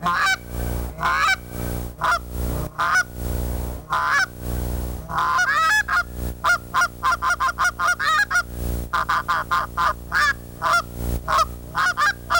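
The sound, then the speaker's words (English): A goose call with a range from a low gander to a high young goose is blown in loud honks and clucks in quick bursts, the pitch jumping between higher and lower notes, speeding into a rapid run of short calls with no talking. “This call has got more of a high end to a low gander to a young goose.”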